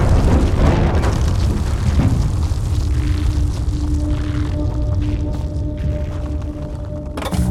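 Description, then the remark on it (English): The Wilford F. Grumley Center for Audio Arts explodes, blamed on an automated gas valve, and the entire building collapses in a loud, continuous roaring rumble of debris, with heavier crashes near the start and end, and no voices. “An automated gas valve is being blamed for an explosion at the Wilford F.”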